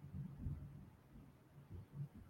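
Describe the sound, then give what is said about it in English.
Faint, low thunder rumbles, a soft uneven throb that swells and fades over a couple of seconds with no voices. “Oh, we're getting some thunder here now.”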